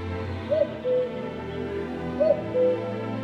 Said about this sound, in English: This means that for the people that live in these places that it flies to, hearing a cuckoo for the first time each year can mark the start of spring.